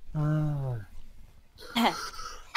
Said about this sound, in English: Hold on. Let me clear my throat.